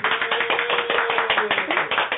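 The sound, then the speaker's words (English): An applause sound effect of a small group: many hands clapping in a dense, uneven patter of sharp, bright slaps, steady and fairly loud for a couple of seconds with no talking. “I forgot to upload the applause sound effect, which would have been appropriate for right. But, I'll give you some.”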